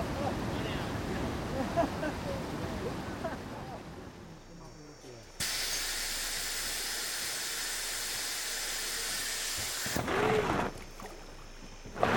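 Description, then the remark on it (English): A raft crashes through churning river rapids, run by a lone expert boatman carrying food and gear, with a steady roar of rushing, hissing water that shifts abruptly between loud bursts, as if from different moments of the run; the last boat takes a beating and flips. “The last boat takes a beating and flips.”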